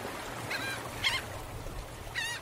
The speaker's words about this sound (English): Dad went and got fish and chips for lunch, and Scarlett caused chaos by throwing chips for the seagulls and they swarmed around them.